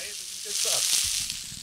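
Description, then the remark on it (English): Steaks searing in hot duck fat in a hot pan in a studio give off a loud, steady sizzle, a dense crackling hiss that swells slightly midway and keeps going without pause. “Okay, so steaks, hot duck fat, hot pan, on the pan.”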